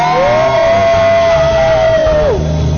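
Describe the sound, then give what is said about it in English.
An audience cheers and makes noise in a loud, steady roar, with one long high-pitched held whoop riding above the crowd before it slides down and cuts off. “Come on, make some noise.”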